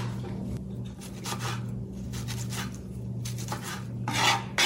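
A woman cuts washed tomatoes into small pieces with a knife on a cutting board, a series of short, scraping, slicing strokes at an uneven pace, over a steady low background hum. No one speaks.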